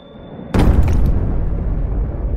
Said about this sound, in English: And then you hear it. The first bomb drops. A whistling sound followed by that large explosion.